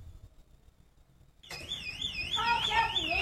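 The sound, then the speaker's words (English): An electronic alarm in a video abruptly starts blaring, a loud warbling, sweeping tone with pulsing harmonics that continues without pause after a quiet, murmuring start. “Yeah, you might want to bring the volume down, too, because there is an alarm going off.”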